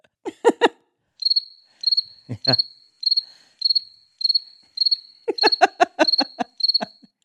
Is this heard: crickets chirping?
yes